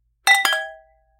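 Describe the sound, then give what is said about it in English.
Wine glasses clink together in a toast to wine: two quick bright strikes in close succession, leaving a clear high ringing tone that fades out within about half a second, with no voices. “Okay, let's cheers.”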